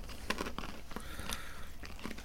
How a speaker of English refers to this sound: So definitely foil fresh. Very crunchy, I can hear you munching.